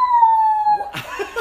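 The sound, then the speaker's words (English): A steady, slightly falling siren wail of an emergency vehicle passing outside sounds for under a second, then gives way to brief bursts of voices or laughter. “It has to be real life sirens.”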